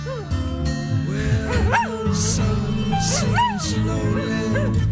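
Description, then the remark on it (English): A dog howls and whines as the lead vocalist on a band's song, over a steady instrumental backing, its long rising and falling cries carrying the melody up front like a lead singer. “Where a dog is actually the lead vocalist on the track.”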